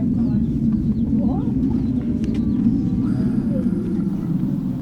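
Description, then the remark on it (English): A steady, low roar of an aeroplane droning continuously at an even, fairly loud level, with a few faint high chirps over it. “An aeroplane.”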